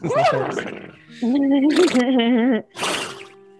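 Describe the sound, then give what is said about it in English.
A person vocally imitates a horse whinny in a few loud bursts: a wavering nasal cry, a sustained quavering tone, then a sharp final snort-like burst. “Horses, come here. Dairy Queen. Horses, I summon thee.”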